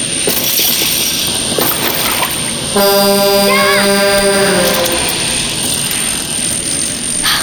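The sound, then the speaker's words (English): A drone's harmonic buzzing whine rises out of a steady roaring background and holds loud for about two seconds in the middle before fading back into the noise. “Another drone? Go away, leave me alone.”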